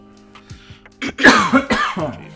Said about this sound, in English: We all just coughing? Yeah. I'm actually not. I got something like that fucking stuck in the back of my throat.